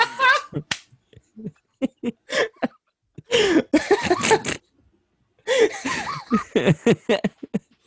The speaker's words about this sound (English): I don't have another sneeze saved. Actually, a sneeze is coming. Here we go.